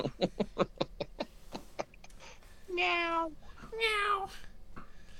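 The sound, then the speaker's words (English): A person mimics a cat with two drawn-out, wavering meows, fairly loud, after a quick run of short, breathy, snicker-like bursts. “Yeah, no, it's just you being like a cat or something.”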